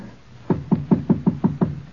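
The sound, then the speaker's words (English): A quick series of seven firm knocks on the door of a flat, evenly spaced, each a dull wooden thud with a short ring, with no voices. “And then... knock.”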